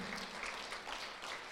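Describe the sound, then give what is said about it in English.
An audience claps together in praise of God, a dense, sustained applause, a steady bright crackle of many hands with no single beats standing out and no voices over it. “Come on, clap for Him.”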